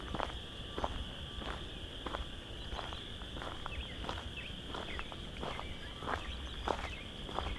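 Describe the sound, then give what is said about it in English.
A dense chorus of chorus frogs calling at the west end of Vine Mount Marsh in late March, with rasping, clicky trills repeating steadily and overlapping over a constant high-pitched drone, soft, with no voices. “We've got a lot of chorus frogs.”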